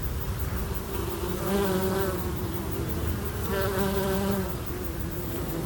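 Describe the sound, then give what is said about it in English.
A bee buzzes steadily, its drone swelling louder twice as it passes, with no voices present. “Amu means bee in the Mi'kmaq language.”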